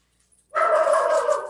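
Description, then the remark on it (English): After a moment of silence, a dog lets out one loud, drawn-out bark that holds a steady mid-pitched tone for about a second, with no voices around it. “Can you tell I have dogs?”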